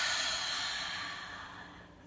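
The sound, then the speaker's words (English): A long, deep exhale after a deep breath in, a breathy, airy hiss that starts strong and slowly fades over about two seconds, clear, with no talking. “Fully into your lungs and release.”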